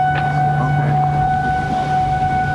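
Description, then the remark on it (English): A loud, sustained local wildfire warning siren in Laguna Beach, California, going off as a test, wails steadily throughout, its tone holding a constant pitch with no break, accompanied by a low droning hum beneath it. “I was hiking last weekend when a local warning siren went off.”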